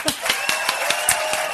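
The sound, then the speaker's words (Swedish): An audience votes by clapping for the boy in the black leather jacket to get the goodie bag, a steady, fairly quick rhythm of sharp, crisp claps at moderate loudness, with no other sound standing out. “Och ni som vill att killen i den svarta skinnjackan ska få goodiebaggen, klappar nu.”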